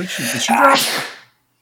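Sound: sneeze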